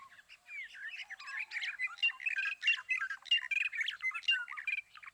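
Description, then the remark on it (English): Racket-tailed drongo calls in the morning: a busy, varied stream of whistles, chirps and harsh squawks, continuous throughout, with no talking. “We hear the fluty whistles of the black-hooded oriole and the impressive repertoire of the racket-tailed grongo.”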